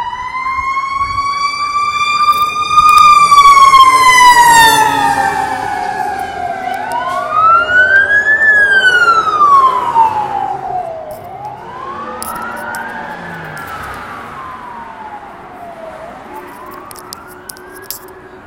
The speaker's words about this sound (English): Fire truck was going faster than fire trucks usually go, which makes me think that there may be a real fire. It's headed from Lincoln Heights toward Chinatown and downtown.